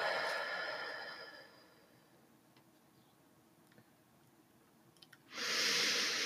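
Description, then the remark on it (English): A slow, deep breath out through the mouth fades out, then after a few seconds of near silence a loud, airy breath rushes in through the nose. No talking, just steady, deliberate deep breathing during a relaxation exercise. “Let's take a few deep breaths. In through the nose, out through our mouth.”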